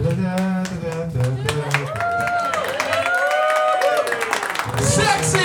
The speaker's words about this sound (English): I just real quick want to tell everybody, I feel like you guys applauded like it was over.